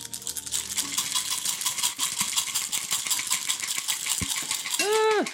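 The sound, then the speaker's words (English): Dice are shaken and rolled, rattling and clattering continuously in a dense stream of small hard clicks for several seconds, with a few sharper knocks, ending with a brief rising-and-falling tonal swoop. “Dice ASMR.”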